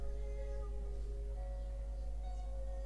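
A cat-like meowing tone sustained over steady, loud musical backing, with long drawn-out notes that sound like a voice imitating a cat in song.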